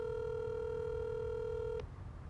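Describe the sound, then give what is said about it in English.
A steady electronic telephone tone hums at an even pitch for almost two seconds during an unanswered phone call, then cuts off abruptly, leaving a low rumbling background. “Nobody wants to answer the phone today.”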